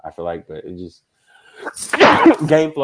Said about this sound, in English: Bless you. Excuse me. Thank you. Yeah, allergic to that Baker jersey. I'm rolling with that. Yeah, I did not start sneezing until I put this on.